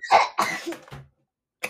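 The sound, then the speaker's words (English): A quick run of three or four harsh, raspy coughs after vape smoke got into the nose from a French inhale, loud and bunched together in about a second, then a brief pause and one more short cough. No one is talking. “The fucking vape smoke in your nose is the worst thing ever.”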